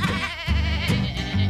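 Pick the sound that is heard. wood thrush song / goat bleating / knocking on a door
goat bleating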